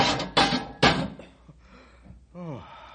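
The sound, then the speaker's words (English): A cage door slams shut on a captured 12-foot-long animal, just released from a pole and neck loop: three loud metallic bangs in quick succession, each ringing out briefly, then a short wavering cry rises and falls after a moment of quiet. “Release the pole and we'll slam the cage door.”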